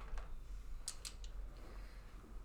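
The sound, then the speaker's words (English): A handful of small, sharp plastic clicks and clacks as dice are scooped up and shuffled together for a roll in a game, fairly quiet, scattered over a couple of seconds with no talking. “I'm getting my dice together.”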